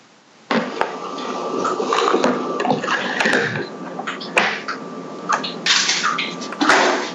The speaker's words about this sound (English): His sink is dripping. Yes, the sink is dripping.